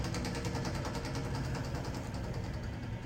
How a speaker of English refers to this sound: It is a train. It must be.